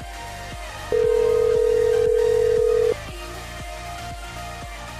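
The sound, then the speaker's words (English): A single steady two-second electronic ring tone of a call-in hotline phone sounds loudly, standing out over a background of rhythmic, beat-driven music; no one speaks. “Oh no, it's ringing.”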